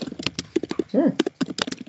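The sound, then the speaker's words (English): Rapid, forceful typing on a computer keyboard: a dense string of sharp clacking keystrokes in an uneven rhythm, fairly loud, with a brief voice sound partway through. “Whoever's hammering on their keyboard there.”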